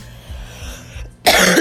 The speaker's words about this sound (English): I'm sorry, y'all. Y'all hear that cough? It's not even cute.